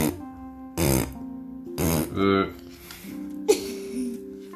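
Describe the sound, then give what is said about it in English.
A voice blows four or five loud, buzzy raspberries in quick bursts, imitating Edmund Elephant's gecko blowing big noisy raspberries, with a soft musical tone humming steadily underneath. “Edmund Elephant's gecko can blow big noisy raspberries.”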